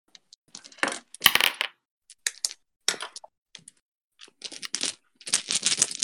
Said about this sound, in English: Hang on, let me bust out the dice.